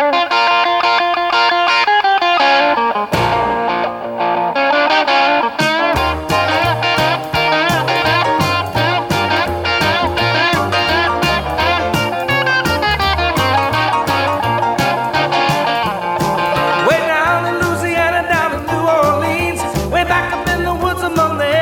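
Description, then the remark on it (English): A loud rock song from a film scene in which Marty McFly's band plays, with distorted electric guitar, driven by a steady walking bass line that steps from note to note in an even, bouncing rhythm underneath the band. “So you can hear that walking bass line again.”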